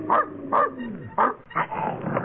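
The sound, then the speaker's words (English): A dog named Blackie, belonging to the elevator operator, barks several times in quick, irregular bursts, loud, with some yippy, whining edges between barks. “Where's that dog? Probably in the elevator.”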